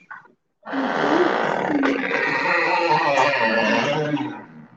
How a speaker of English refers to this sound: Oh, that's a creaky door. The audience is creaking up the door.